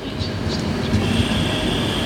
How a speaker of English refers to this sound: I arrived at the Rotterdam train station quite early in the morning. It was busy. Some 110,000 travellers pass through the station every day.